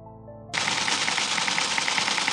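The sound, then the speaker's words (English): A short tonal note gives way to dense, rapid mechanical clatter, like a typewriter being typed on quickly, with a steady stream of loud keystrokes and no voices. “Are you tired of that sound? Well, introducing computers.”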